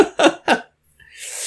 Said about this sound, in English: But you just said, God bless you when I sneeze.